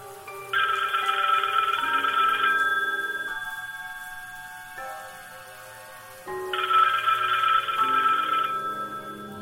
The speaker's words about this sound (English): you are on the phone, and the phone is ringing as Bakersfield is searching.